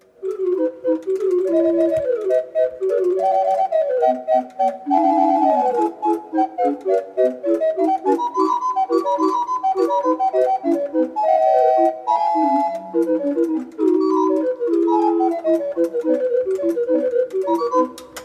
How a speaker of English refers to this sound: That allegro was played on the Haydn-Niemich mechanical organ clock. Let's listen back as to why this fascinating machine is more than just your average clock.